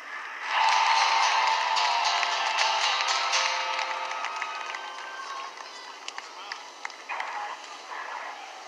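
A large crowd at a Cubs celebration erupts into loud cheering as a country singer is introduced; the cheering starts abruptly, holds as a dense roar, then gradually thins out, with scattered shouts and whistles cutting through.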